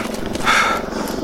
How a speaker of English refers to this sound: What is that sound over there? Somebody's mowing their yard. In the wasteland. I'm sure it's a machine gun of some sort, but it sounds like a lawnmower.